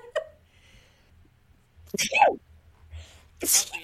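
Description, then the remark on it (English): One person sneezes, a quick breathy build-up followed by a sharp, loud burst, with only a faint low hum underneath and no talking. “Bless you.”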